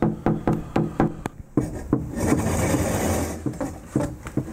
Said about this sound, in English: He's got a stick that he props up against the wall outside, and he just sort of taps on my window kind of lightly. Can you hear it? It's right at 8 o'clock. That's it. That's the knocking.